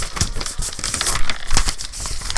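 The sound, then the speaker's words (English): Crisp rustling and crinkling of a sheet of paper being handled, with irregular bursts of crackle over a couple of seconds and no voices. “I'm going to start a piece of paper page. I got a piece of paper.”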